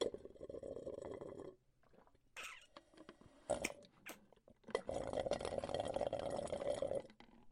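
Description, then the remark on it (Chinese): A cup of hot milk tea, ordered from a vendor with extra milkshake, is poured in two steady, gurgling streams, with a short pause of clinks and light clatter between them; no one speaks. “老板，给我来一杯奶茶。我要热的啊，多放点奶昔。”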